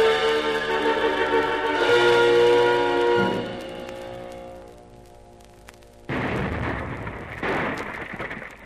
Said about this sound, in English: It's definitely shellfire. I don't like the sound of it.